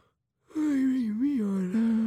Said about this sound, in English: Yawning is contagious. Yeah, it is. Pro tip. If you're at the bar and you want to know if someone's checking you out, just yawn and see if they yawn back.